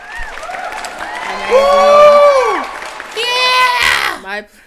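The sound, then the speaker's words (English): A short burst of crowd cheering and whooping with applause underneath, loud, swelling for a few seconds before cutting off abruptly. “That deserves another round of applause.”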